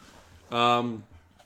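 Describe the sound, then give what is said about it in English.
A single loud, drawn-out bark from a female dog barking to get a squeak toy, tonal, lasting about half a second against quiet background noise, with no talking around it. “Oh, she's gonna bark until she gets that toy.”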